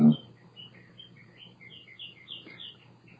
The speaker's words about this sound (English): We have a soundtrack for the interview, the bird singer. Oh yeah, I love these birds. I go nuts listening to these birds.